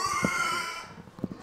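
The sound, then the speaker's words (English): A pig screams shrilly and continuously during a blood draw, a loud, piercing squeal that fades out after about a second, followed by a few low, muffled knocks and grunts. “they scream more loudly because they get agitated from the previous pig”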